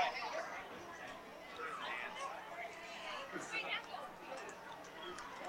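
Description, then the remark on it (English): Crowd chatter at a high school softball state tournament game between Hastings High and Grand Island Northwest, in the afternoon during the fourth inning: a steady, moderate murmur of many overlapping voices with no single clear talker, with occasional brief louder exclamations rising out of the babble. “What a great crowd on hand here this afternoon.”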